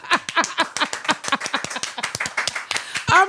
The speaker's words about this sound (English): So today our guest is NeNe Leakes. Oh, do I hear a round of an applause?